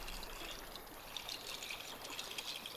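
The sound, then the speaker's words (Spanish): Water trickles and splashes steadily with a bright, bubbling texture, like a small stream running over stones, continuous throughout with no voices. “Escucha y siente el sonido del agua.”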